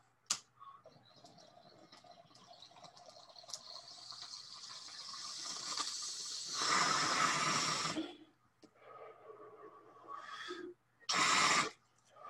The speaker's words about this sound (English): But we're going to go ahead, smoke this bowl.